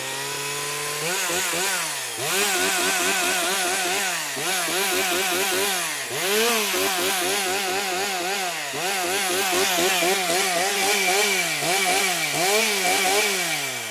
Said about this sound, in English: But this time, it is our moment of chainsaws. It's a moment of chainsaws.